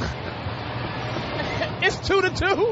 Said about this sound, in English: All right, hold on. We're waiting for the bus to pass. Hold on. All right, there it goes.